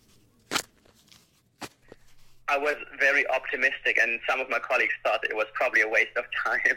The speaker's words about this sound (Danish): Det fortæller han om på en lidt skrattet telefonforbindelse.